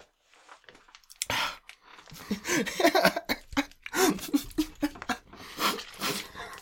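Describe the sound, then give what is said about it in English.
Wet chewing of a sticky peanut butter snack sticking to the roof of the mouth, with irregular smacking and clicking mouth noises and soft breaths, fairly loud and continuing without speech. “especially if I'm trying to make sound with it and it gets all over the roof of my mouth and stuff.”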